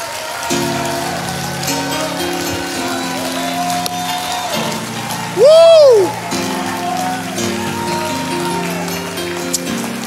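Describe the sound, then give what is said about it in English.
An audience claps their hands to the Lord in a dense, crackling wash of applause over sustained keyboard chords, with one loud rising-and-falling shout of praise breaking out midway. “And if you believe the Lord's going to do it, I want you to clap your hands to the Lord and give the Lord a shout of praise here tonight.”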